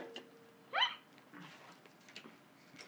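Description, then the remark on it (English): A single sharp, genuine hiccup pops out near the start, a quick rising vocal catch, followed by soft breathing and faint rustling in otherwise quiet surroundings. “That was an honest hiccup.”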